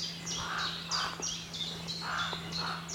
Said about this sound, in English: Ooh, raucous. Yeah, carrion crow.